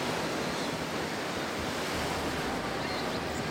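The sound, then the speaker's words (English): Steady roar of ocean surf washing against the shore, a dense continuous wash of noise with some wind buffeting, no voices and no distinct breaks between waves. “I guess we're at the coast.”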